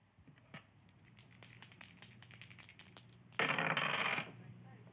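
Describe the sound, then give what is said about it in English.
Dice or lots clatter in a quick series of small clicks and taps, representing soldiers casting lots for Jesus's clothes after the crucifixion, then a louder burst of rattling near the end as they are thrown, with no voices. “Dice or lots, yeah, lots. So, again, this sound of lots being, and not so much for Jesus or the disciples, but what do you think this sound represented for the soldiers who were engaged in it?”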